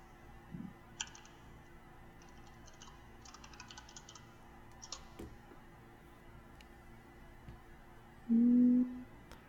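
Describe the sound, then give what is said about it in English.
Keys clack on a loud mechanical keyboard in irregular bursts of typing, crisp, with a short low droning tone near the end and no voices. “It's very loud. It's called a mechanical keyboard.”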